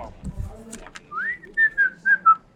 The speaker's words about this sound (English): That fucking whistle. He's whistling. He's playing with you. He's fucking with me. That's my nervous whistle.